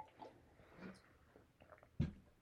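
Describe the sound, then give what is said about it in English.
Quiet sipping and swallowing from a water bottle after its cap is taken off, soft wet mouth sounds, ending with a short thump as the bottle is set down or handled. “Oh, help if I took my cap off my water.”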